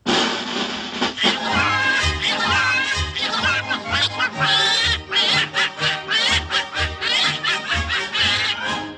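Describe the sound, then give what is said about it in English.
Raspy cartoon duck voices from a 1938 cartoon quack out a melody together over a bouncy musical accompaniment with a steady thumping bass, loud and continuous throughout. “it appeared in the cartoon Good Scouts, performed by some of our favorite cartoon ducks”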